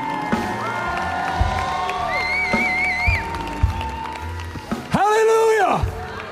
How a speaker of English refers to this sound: Give Jesus a great big hand clap one more time. Come on. Not a 12:30 hand clap, like a big one.